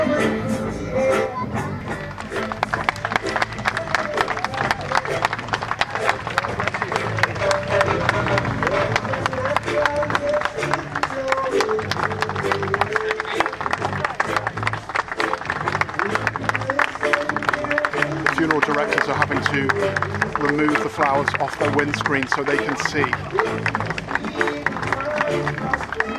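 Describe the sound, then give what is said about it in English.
A large outdoor crowd in Bray, County Wicklow, claps steadily and continuously as Sinead O'Connor's funeral hearse passes the harbour bar, the applause dense and sustained throughout, with people talking and calling out "God bless you" over it. “People are clapping. A moving moment.”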